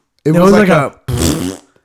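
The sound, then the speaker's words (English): A voice makes two loud, buzzy fart-like blasts with the mouth, imitating a solid punch-like fart, a longer one followed by a shorter one after a brief gap. “It was a nice solid like... Bah! Like a punch fart.”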